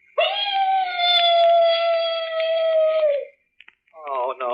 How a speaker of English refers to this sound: The mournful howl of a dog. You know, in every ghost story, there's always a dog howling someplace. Well, that ain't a real dog. That's just a standard ghost sound effect.